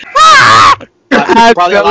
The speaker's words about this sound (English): I'm only going to save the scream only maybe two times. So No, I'll rip that out and I'll put it wherever it's needed in the video.